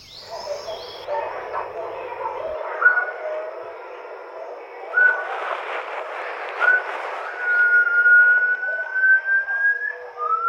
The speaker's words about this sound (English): And then I decided to be a bit of a div, and I dug up a iffy recording of a type of gibbon, a species that I know Sasha has never encountered, to see what she made of it.